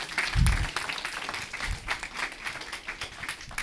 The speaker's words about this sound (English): But at first, I'm going to tell you how beautiful y'all are. How about y'all give y'all selves a round of applause for being beautiful Christians?